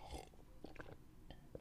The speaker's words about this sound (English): Let me get a sip of water. Wait one second. Sorry.